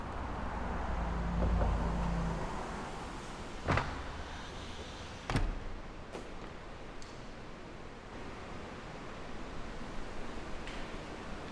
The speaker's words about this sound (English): both leaves of one of the lift and slide doors facing onto the Granville Bridge, and you can now hear the sound of the city coming in. And what we're going to do is slowly close them back up, and you'll hear this sort of calm return to the space.